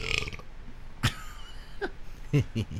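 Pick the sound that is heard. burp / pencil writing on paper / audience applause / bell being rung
burp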